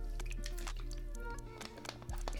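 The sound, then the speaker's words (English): A swig of water: wet, clicky gulping and mouth sounds in quick irregular bursts, with a faint swallow, over a steady low hum. “My bad for hearing me taking a swig of water throughout this whole podcast.”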